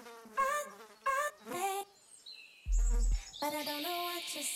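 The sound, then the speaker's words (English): Swarming gnats and horseflies buzz in repeated swells, droning wings wavering in pitch, with a thin high whine drifting through and a brief low thump midway. “Gnats and horseflies swarmed and poked holes in her face.”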